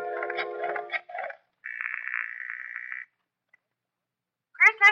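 A telephone number of Grierson Enterprises is dialed from a phone booth in a few quick electronic tone bursts, followed by a steady buzzing tone lasting over a second, then silence before a voice briefly begins speaking.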